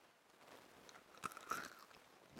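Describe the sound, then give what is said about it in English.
Close, crisp crunching of a lime green M&M candy-coated chocolate being bitten and chewed, with a few sharp cracks around the middle and softer mouth sounds between them, no talking. “No one likes chewing noises.”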